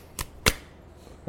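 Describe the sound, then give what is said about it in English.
Three quick thumps of fists pumping for a game of rock, paper, scissors played with three pumps, the first two close together and the third after a short pause, each a sharp, fairly loud hit with no talking. “Did you know there was a difference in rock, paper, scissors before this podcast? As far as there was a difference as four and three pumps.”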